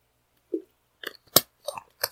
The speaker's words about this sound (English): Let me drink before I start this.